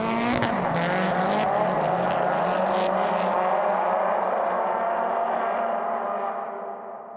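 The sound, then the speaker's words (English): A car engine revs hard while drifting, its pitch sliding under a wash of squealing tires, holding loud for several seconds before tapering off at the end. “You know, the noise of the car, the fumes, people around you, photographers taking pictures, video cameras, everything.”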